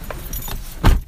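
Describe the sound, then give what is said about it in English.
Keys jangle in a few quick metallic bursts as someone gets into their car, followed by a louder thump like the car door or someone settling into the seat. No one speaks. “all right, getting in my car right now. Getting in the old car.”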